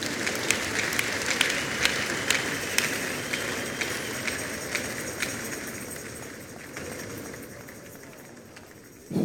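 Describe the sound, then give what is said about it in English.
An audience applauds for God at the close of an evening church service, a dense wash of many hands clapping at a fairly even level that slowly tapers off toward the end, with sharper individual claps popping out above the crowd. “If you have been blessed, clap some more for the Lord, everybody.”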